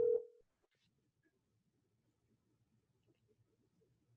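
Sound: phone call ringing tone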